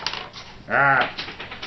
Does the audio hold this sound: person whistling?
no